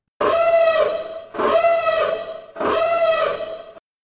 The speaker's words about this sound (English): Okay, cool. So with all that said, let's have the spoiler siren.